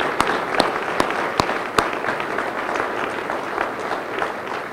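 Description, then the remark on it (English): An audience at the Conley Center breaks into steady applause for the staff, a dense wash of many hands clapping, with a few louder, sharper claps standing out early on before it settles into an even roar. “The first, I'd like to really give a warm round of applause to the fabulous staff here at the Conley Center”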